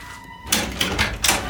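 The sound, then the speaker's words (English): A door opens after a brief quiet moment, giving off a few bursts of rattling, scraping noise in quick succession, with no one talking. “It's okay. It's just the door.”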